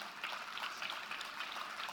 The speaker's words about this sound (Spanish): That the substance of things, hallelujah, go ahead, give him dale un aplauso.